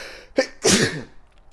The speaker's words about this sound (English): Excuse me, I just sneezed. Don't know where that came from,